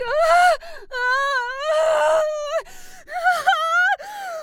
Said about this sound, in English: You were having a nightmare and screaming and kicking and punching the air.